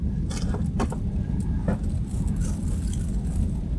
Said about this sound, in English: Hang on, let me see how long the train is. Stand by.